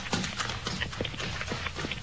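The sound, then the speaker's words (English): A man's quick running footsteps slap a hard road in a steady, brisk rhythm as he runs up the road past two men trudging home, each step a sharp, fairly loud thud with no voices over them. “Yes, a man running up the road, past the two fellas trudging home.”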